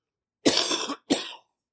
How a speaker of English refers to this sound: And I'm sorry to do this, but I have to cough.